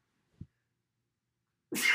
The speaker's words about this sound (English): sneezes like 10 times in a row. Jesus. It's not over. ASMR for sneezing.